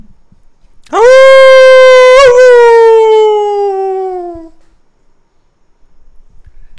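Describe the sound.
A person imitates a wolf howl: one loud, sustained cry lasting a few seconds with a slight wobble in the middle, gradually sliding lower in pitch before it fades out.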